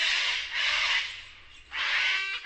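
Sulfur-crested cockatoo calls: a few loud, harsh, raspy screeches in quick succession, with a brief dip between bursts and no voices.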